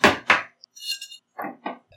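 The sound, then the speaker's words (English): Glasses of Austin 85 Light Whiskey clink together in a toast with a brief, bright ringing tone that fades within half a second, surrounded by a few dull knocks as the glasses are handled and set down. “Cheers. Tink.”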